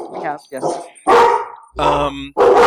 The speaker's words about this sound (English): basically, dogs are saying is give it up, she's won.